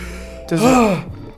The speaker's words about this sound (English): Are you all right? Are you okay? Just having trouble breathing. I just knocked the wind out of me.